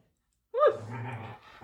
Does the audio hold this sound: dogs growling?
yes